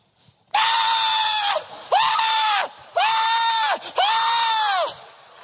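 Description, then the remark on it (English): A voice imitates a newborn baby screaming and crying in four loud, drawn-out, strained wails, each about a second long with brief gasps between. “Every single baby around the world comes into the earth just like this.”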